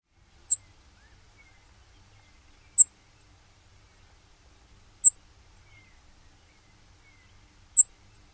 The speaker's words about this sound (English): The call of the Brewer Sparrows are soft to sip or seep, similar to other Spitzella sparrows.